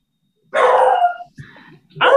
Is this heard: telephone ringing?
no